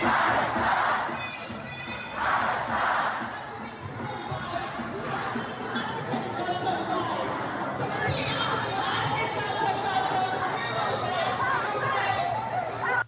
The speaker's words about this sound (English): All right, listen to this. This is happening in London. Okay, listen to this crowd. This is amazing. There's hundreds and hundreds and hundreds of thousands of people. I've never seen, it's like crazy.